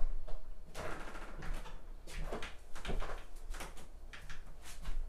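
A door rattles and scrapes as it is pushed open and shut, with a series of clattering, sliding bursts spread over a few seconds and no voices.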